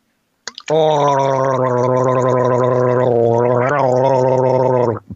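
A person gargles a sip of seltzer loudly and steadily for about four seconds, a continuous bubbling, throaty drone with a slight pitch wobble partway through, then stops.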